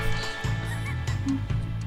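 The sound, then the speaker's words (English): A bird honks and squawks loudly, a harsh goose-like call repeated in quick, rhythmic bursts about every half second, with no talking. “it's just a bird with a rock in its mouth.”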